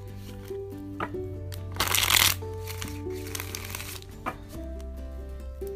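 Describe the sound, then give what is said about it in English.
A deck of tarot cards is shuffled for a tarot reading, with scattered flicks and taps and one loud riffling burst partway through, over soft, steady background music. “Again, while I'm shuffling the cards here”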